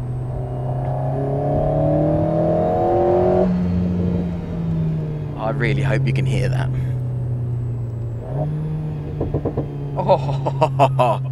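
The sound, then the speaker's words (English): A car engine drones and revs, its pitch rising and falling, with sharp crackling exhaust pops bursting out in two clusters. A man speaks briefly over the engine. “Oh, pop, pop, pop.”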